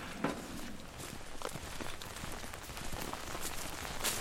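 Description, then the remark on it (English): Steady rain patters down in a hornbeam and oak forest at night, just after 11 o'clock, a dense hiss of drops with sharper splashes scattered throughout. No one speaks. “The pitch black. I can't see my feet. It's raining.”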